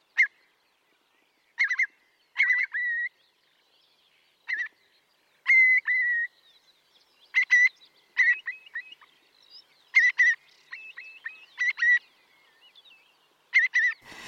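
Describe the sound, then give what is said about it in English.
A curlew calls repeatedly with its clear, whistled, rising "cur-lee" note, the call from which it gets its name, sometimes singly and sometimes in quick pairs or runs, ringing out against a quiet background with no talking. “But the most famous ones are the sound from which the curlew gets its name, the curly sound.”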